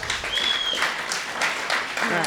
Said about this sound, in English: a big round of applause.